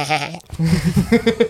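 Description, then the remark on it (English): A person imitates a goat with a loud, wavering bleat, then breaks into a rapid series of short, choppy bleating cries, with no other sounds. “You want us to sit there and scream like a goat for an hour all sexy to get you going?”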